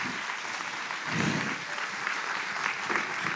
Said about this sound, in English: Big round of applause for these two women